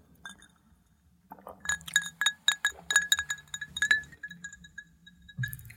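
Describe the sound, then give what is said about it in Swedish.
Several glasses of drink clink together in a toast in quick succession, bright ringing taps clustered over a couple of seconds, fairly loud, with a faint rustle before and after and no talking. “Vi smakar av den här tycker jag. Skål.”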